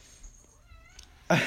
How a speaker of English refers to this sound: That's because my cat just walked into my room with a toy right now. Now he's meowing.